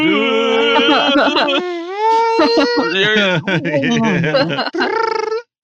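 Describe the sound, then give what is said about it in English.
A voice mimics a dial-up modem connecting: a continuous string of warbling, gliding tones, screechy chirps and buzzy sweeps shifting rapidly in pitch for several seconds, fairly loud and without words. “The modem sound, the dial up sound.”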